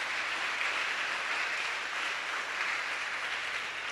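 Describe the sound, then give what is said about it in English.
An audience at a Sunday church service claps together in a steady, dense burst of applause that holds at an even loudness for the full four seconds, with no voices coming through. “Your clapping is not equal to...”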